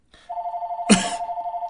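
A phone rings from an incoming spam call from Sussex County, with a steady, mid-pitched electronic tone that pulses rapidly and evenly, interrupted briefly by a louder rustling knock partway through.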